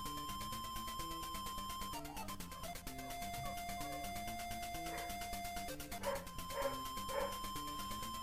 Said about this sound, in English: Dog. Dog. The dog's not actually in the song. That was in the house. Yeah, just totally ignore that. You never even heard it.